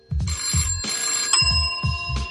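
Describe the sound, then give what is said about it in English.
A phone rings loudly, its bright electronic ringtone tones held steady over a repeating thumping low beat, with no voices. “It's a phone check, fool.”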